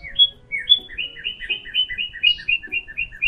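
A small blue bird sitting on an old squirrel's shoulder tweets brightly in quick, repeated chirps, a lively run of high notes that speeds up into a steady twittering, over a faint low background rumble.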